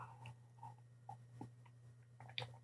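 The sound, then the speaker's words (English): Someone sips green tea, making a few short, soft slurping and swallowing mouth noises spread over a couple of seconds, with a steady low hum underneath and no talking. “I'm going to take a sip of this tea, yo. Because I got some green tea in front of me and I need it.”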